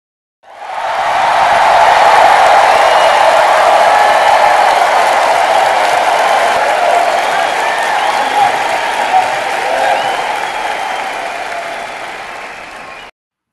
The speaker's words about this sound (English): as usual, let's give him the best applause.